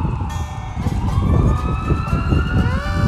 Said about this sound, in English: Oh, and that right there is an ambulance.